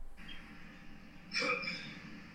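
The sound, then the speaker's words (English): A single short sneeze bursts out midway, sharp and breathy, standing clearly above a quiet, slightly hissy background with no talking around it. “Excuse you. Bless you.”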